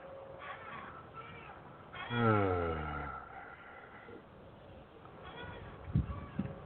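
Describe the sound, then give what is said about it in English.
A chair gives one drawn-out, squeaky creak that slides downward in pitch, clear, followed by quieter background noise and a couple of soft knocks. “Sounds like somebody's on an old porch swing, though.”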